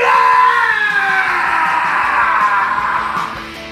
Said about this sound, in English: Just yell in your steering wheel. Lose your voice.